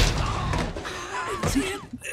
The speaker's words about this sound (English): He ran into the wall again, or the glass again.